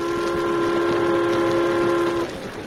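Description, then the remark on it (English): A train rumbles along steadily while a long, sustained horn chord sounds over it, then cuts off near the end, leaving the rolling noise of the cars. “How are we going to get from this train to the eastbound?”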